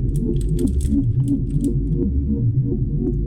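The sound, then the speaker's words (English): Rapid, irregular clicking of keys on a computer keyboard as someone types a search into Google in a web browser, with a steady low hum underneath and no voices. “Reach down and start typing.”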